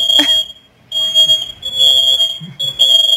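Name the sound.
smoke alarm beeping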